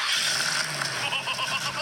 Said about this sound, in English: Can you tell by the sound? Yeah, what is this? No. Tractor? No, it's a car. It's a Ford something. It's Ford something.